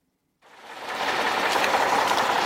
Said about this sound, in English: Surrounded by apartment buildings, a workman in a backhoe cuts a deep trench in the snowy ground. His colleagues prepare to lay a replacement power line that will serve several thousand residents.